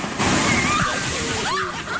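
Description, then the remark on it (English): A big ocean wave crashes onto a beach where people are sitting and posing, washing loudly up the shore in a sustained roaring slosh of water, with faint voices audible over the rushing surf. “They don't see a giant wave is about to crush them.”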